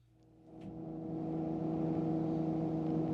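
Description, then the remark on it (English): A helicopter engine drones steadily, swelling in loudness over the first second and then holding a constant, humming mechanical whine with no voices present. “Like a boat or a helicopter? Helicopter, yeah.”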